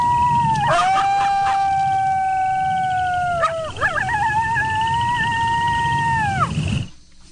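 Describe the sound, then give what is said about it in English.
Coyotes howling in long, wavering sustained calls with a few short yips early on, two extended howls rising and falling over a steady low rumble before cutting off abruptly. “Oh yeah, it's coyotes.”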